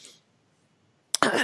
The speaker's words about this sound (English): Must clear my throat.